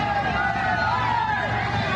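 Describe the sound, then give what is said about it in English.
A large crowd roars and cheers in a steady, dense wash of voices, loud and continuous with a few raised shouts rising above the din. “Those are obvious cheers.”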